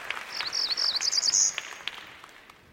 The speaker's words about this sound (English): Let's hear bird number three. Northern parula? Almost. Cerulean warbler? Yes, that's okay. The one. Let's see it. Here it is.